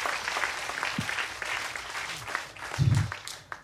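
An audience breaks into steady applause at the end of a quiz, a dense crackle of many hands clapping at once, fairly loud and sustained throughout with a brief low thump near the end.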